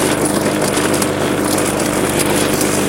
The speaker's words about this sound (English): Pretty uneven, but I don't really care. Looking like about probably a good 10 more minutes of mowing here.